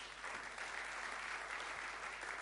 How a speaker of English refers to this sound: Round of applause.